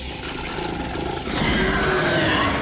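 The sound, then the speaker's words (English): A deep, rumbling beast growl echoing through a cave, swelling midway into a louder, rasping snarl, sustained and throaty with a gritty, roaring texture and no voices. “A deep growl echoed throughout the cave as the eyes inched closer.”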